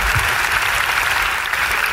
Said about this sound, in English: Can you want to clap for that? Yeah. Clap for that. That's some good stuff right there.